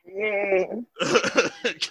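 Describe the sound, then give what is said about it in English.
A person imitates a horse's neigh, starting with a sustained, quavering, high-pitched note, then breaking into a rapid, breathy, stuttering whinny. The voice is fairly loud. “Like, I neigh at a frequency that kills bitches.”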